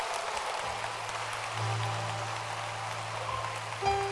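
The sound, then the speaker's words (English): A crowd claps hands in a dense, sustained wash of applause for about four seconds, steady and fairly loud, with a low droning tone running underneath and no voices. “You should clap your hands.”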